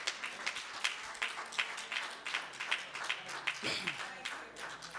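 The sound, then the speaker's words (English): A church audience at a service claps together in a steady, fairly quick rhythm of sharp, bright hand claps at moderate loudness, with scattered voices calling out underneath. “Can we get a Lord a hand clap?”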